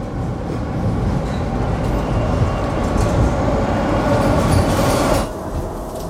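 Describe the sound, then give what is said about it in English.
A subway car roars past with a loud, steady rumble and rattling wheels, then the noise suddenly drops away as it pulls off. No one speaks. “You wait until his subway car zooms away.”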